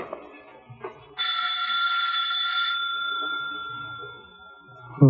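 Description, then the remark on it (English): An apartment doorbell rings with a bright, sustained metallic tone for about a second and a half, then a softer lingering ring that slowly fades, with faint background noise around it. “And as Mike rings her doorbell...”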